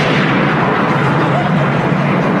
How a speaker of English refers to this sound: It's all right. It's not a bomb. It was thunder.